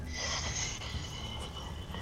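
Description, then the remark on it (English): A person hisses like a snake, as if speaking snake language, a long breathy hiss that is strongest at first and then carries on more softly to the end, with no words spoken. “and they sort of, like, hiss back and forth for a little bit, clearly speaking some sort of snake language.”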